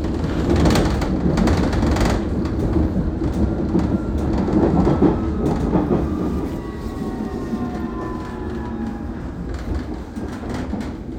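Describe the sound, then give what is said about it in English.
A train rumbles loudly at a station platform on a chilly November morning, on the way to Plaistow in East London. Its heavy clatter eases after a few seconds into a steady hum with a thin, high whine as it slows. No one speaks. “By the time I'm at the train station to make my way to Plaistow in East London, I realize I'm unmistakably underdressed.”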